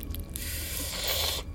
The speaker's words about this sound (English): All four of them, you can hear these bones crunching and reforming inside these sacks.